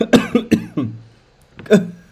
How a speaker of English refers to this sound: I think that actually made me cough, actually, which is a bit...